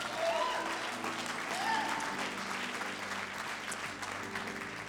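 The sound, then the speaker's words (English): A church audience clapping their hands on request in a steady, dense wash of applause that holds for several seconds at a fairly even level, with a few faint voices calling out beneath it. “If you're expecting a jam-packed house for Easter, clap your hands.”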